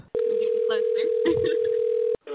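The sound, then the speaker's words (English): A steady outgoing ringback tone from a phone call placed live on the radio sounds clearly for about two seconds, then cuts off and briefly starts again, with people talking faintly beneath it. “It's ringing.”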